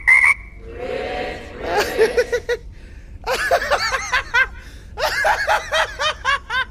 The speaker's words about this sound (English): The frog says...